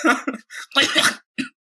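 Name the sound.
cough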